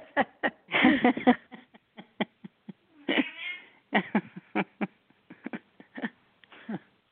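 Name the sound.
cat meowing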